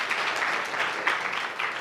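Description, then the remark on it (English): An audience at a Sunday sermon clapping together, a steady dense patter of many hands at moderate loudness with no voices standing out. “Will you come back next week? Clap if you will, okay?”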